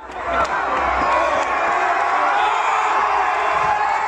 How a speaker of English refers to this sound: Those cheers you're hearing are from a Black Lives Matter protest in Bristol, England in 2020. People are celebrating the fact that a statue of the slave trader Edward Colson, that once occupied a prominent position at Bristol's port, has been pulled